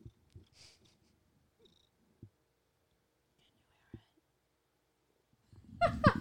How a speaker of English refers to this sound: Can you hear the cat purring? Yes. The cat is in my lap. It's wonderful.